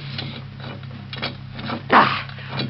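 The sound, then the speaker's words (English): Creaking, grinding mechanical strain with repeated scraping bursts and a louder wrenching crunch near the end, as one man forces a heavy door open with an iron lever. “What a shame, Mario, that you can't help me lift this door. Even with an iron lever, it's Too much for one man to open all the way.”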